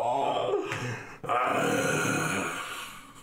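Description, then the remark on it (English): The dragon Turgal roars in pain and sorrow: a loud, harsh, growling wail that breaks off briefly, then surges back in a long, strained cry that slowly fades, echoing throughout a chamber. “A draconic roar echoes throughout the chamber in pain and sorrow and in servitude.”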